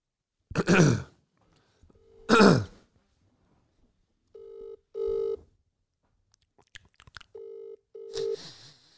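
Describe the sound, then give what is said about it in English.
A couple of loud throat-clearing coughs, then the ringback tone of an outgoing phone call: two paired electronic beeps separated by a pause, clear, with no talking. “Let's just give him a call.”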